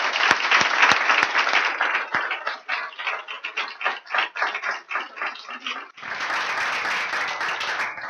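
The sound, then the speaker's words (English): An audience applauds with dense, steady clapping that briefly thins into scattered claps, then swells back to full, loud applause, welcoming a visiting speaker back to a college campus for an evening presentation. “You clap now.”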